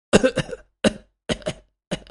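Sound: cough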